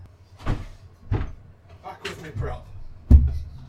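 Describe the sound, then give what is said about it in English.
A shed door is opened and shut as someone leaves the shed to fetch a prop, with a few knocking thuds and rattles followed by a louder closing bang near the end, and some indistinct voice in the background. “He's just left shed. I need a prop. I'll be back. That door.”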